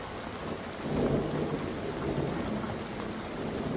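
A thunderstorm brewing on the horizon, with a deep, rolling rumble of thunder swelling about a second in, over a steady hiss of rain; continuous, with no voices.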